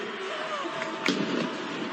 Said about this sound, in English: The cannon firing from the end zone. Fireworks and confetti in the air.